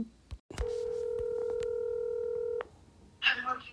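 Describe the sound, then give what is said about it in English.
A telephone tone sounds as one steady, loud electronic beep held for about two seconds, preceded by a sharp click and followed by a brief burst of faint noise. “3-minute phone call cutoff segment starts now. Answer the phone.”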